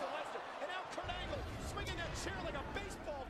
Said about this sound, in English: Yeah, Kurt Angle is swinging for the fences with that fucking chair. And he's lining up.